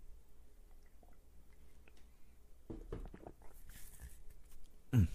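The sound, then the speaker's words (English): After a few quiet seconds, someone takes a sip of a drink, with soft wet slurping sounds and a louder swallow at the end. No one speaks. “1 Peter chapter 2, while I take a sip.”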